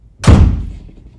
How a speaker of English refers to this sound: Now clear out. And you shut that door after you.